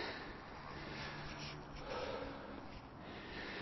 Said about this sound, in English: deep breaths from inside my belly, out through my mouth.